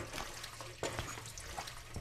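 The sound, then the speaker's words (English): Water runs steadily from a tap at a sink in an apartment as a woman washes dishes, with a few soft knocks and clinks of dishes being handled under the flow. Moderately quiet. “The wife, 5 months pregnant, is washing dishes, while her husband, holding their 2-year-old son, paces behind her.”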